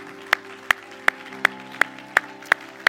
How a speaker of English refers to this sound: Anybody on board with that today? Clap your hands in thanks to the word of the Lord.